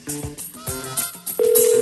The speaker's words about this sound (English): Okay, so yeah, if your phone's ringing and you got registered, please answer the phone. Answer the phone, man.